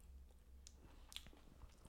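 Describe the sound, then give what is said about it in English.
Close, wet chewing right against the microphone, with several crisp crunchy bites popping out over a low background hum; no one is talking. “Can you not chew into the mic? I don't want to hear that.”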